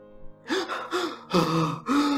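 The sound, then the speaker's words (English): A person demonstrates shallow gasping breaths: four quick, breathy gasps in a fairly steady rhythm, each a short airy pant with a slight voiced edge. “See, the funny part is you can't hold your breath for such a long time. Did you get what I'm trying to say? Because of your shallow breathing.”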